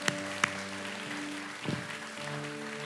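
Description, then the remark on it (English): A church audience claps for those who prayed to accept Jesus, a steady, dense wash of applause, with a couple of sharper claps near the start and sustained keyboard-like tones holding underneath. “Come on, give them a hand clap today.”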